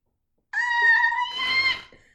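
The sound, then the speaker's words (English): A female cat hisses in one loud outburst of about a second and a half, starting with a strained, tonal yowl and breaking into a harsh, raspy spit before trailing off. No one speaks. “I can't even imagine how many times I've heard her hiss on this audio.”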